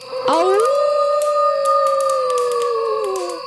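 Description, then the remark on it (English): A single long wolf howl rings out in the distance, swelling upward, then holding a steady, mournful tone for about three seconds before trailing off slightly, with no talking. “A howl. Fantastic.”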